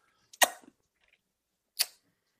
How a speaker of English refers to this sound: Mouth noises. Slamming beer cans and slapping lips.